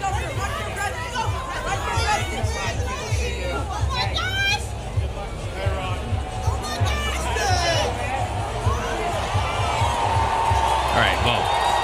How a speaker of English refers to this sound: Everything up to the crowd roaring was for him. That was when the Chiefs were running out. They were excited about that. They went wild.